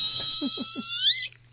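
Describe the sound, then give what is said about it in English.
A voice imitates a dolphin with a loud, sustained high-pitched squeal, three quick low chattering pulses underneath, before the squeal bends upward and abruptly cuts off. “So is that the noise that dolphins make when they have orgasms?”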